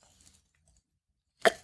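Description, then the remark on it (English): A short silence with faint low rustling, then a single sharp wet gulp of a drink of water near the end, brief and fairly loud, with no talking. “Let me get a drink of water here because this is going to be a lot to talk about.”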